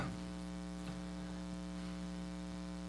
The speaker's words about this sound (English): Yeah, I want to play that. I can't find where that hum's coming from in that one section of the mixing board, and it's really annoying me.